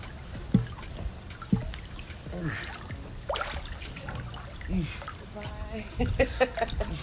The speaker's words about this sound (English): enjoy if you want to just listen, enjoy it, but I'm getting in the water and you guys can listen to that too.